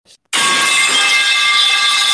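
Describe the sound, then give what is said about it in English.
A voice imitates a Hydro Flask metal water bottle dropped on the floor during a prelim exam, echoing through the whole hall: an abrupt clang followed by a bright, hissy ringing tone held steadily for about two seconds, like an echoing metallic reverberation. “Someone dropped a hydro flask on the floor. I kid you not, it echoed through the whole fucking hall. It sounded like this.”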